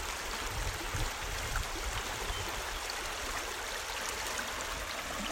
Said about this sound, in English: I'm not sure why water makes that burbling sound like that.